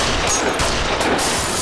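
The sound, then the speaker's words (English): A burst of gunfire: several sharp, loud cracks fired in quick, uneven succession over a dense, noisy background, with no voices. “where did you get that gun? It's always in my purse.”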